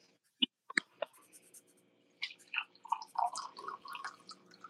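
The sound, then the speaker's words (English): A few sharp clinks and drips, then coffee poured by a man splashes and gurgles steadily into a cup, fairly quiet, with no one speaking. “I love it that he's pouring the coffee.”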